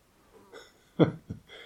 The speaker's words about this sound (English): So then you're attuned to the non-coughing. And the cough just pops up, passes.